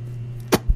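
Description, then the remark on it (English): A quick mouth-made fart noise: one sharp, breathy burst followed by a soft low thump, over a steady low hum, with no talking. “What is it? A fart noise?”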